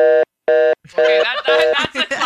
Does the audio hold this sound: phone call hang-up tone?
yes